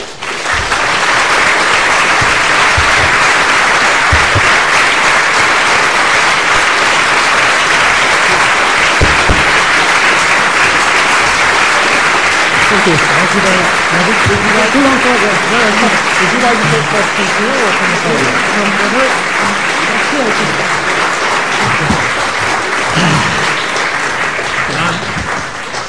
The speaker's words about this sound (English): I hate to cut off the applause, but it's going to eat into the Q&A time, and I think there'll probably be lots of people who want to ask questions.